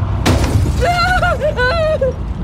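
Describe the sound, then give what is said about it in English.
A car loses tire grip, aquaplanes and crashes into a roadside hedgerow with a sudden loud, shattering impact and a low rumble, followed by a wavering, high-pitched squeal that rises and falls for over a second. “The tires lost grip and the car aquaplaned into the nearside hedgerow.”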